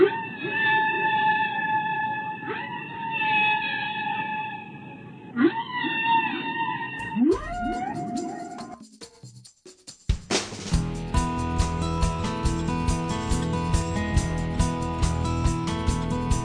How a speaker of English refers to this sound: So we leave you with this collection of whale songs.